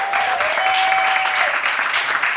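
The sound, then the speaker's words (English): Sustained, dense applause from an audience for all of the evening's performers, steady and loud throughout with no pauses, a thick wash of rapid overlapping claps and no clear speech. “Before, give a big round of applause for everyone you saw.”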